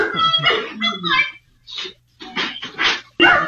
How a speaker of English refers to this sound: And so the dogs are kind of barking.